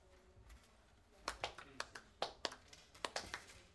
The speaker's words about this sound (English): I was quite fine with the mocking golf clap. If it was their way of rookie hazing, good for them.